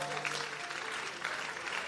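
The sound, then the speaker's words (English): An audience claps together in a dense, continuous wash of many hands, steady and fairly loud throughout, with no distinct individual claps standing out. “Are you clapping or you?”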